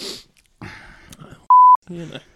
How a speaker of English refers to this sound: I'm going to say that word as many times as I can so you can edit it out. Yeah, I reckon people have probably guessed what we're... what I am bleeping out, because it is the only word we don't put in.